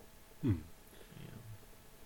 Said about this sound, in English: And sorry, my cat. Our second guest of the night, Cosmo.